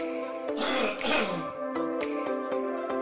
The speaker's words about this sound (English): Excuse me, I got a cough.